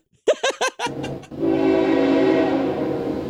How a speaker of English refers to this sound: Ooh, I hear a train. Ding, ding, ding, ding, ding, ding, ding, ding. Hold for train.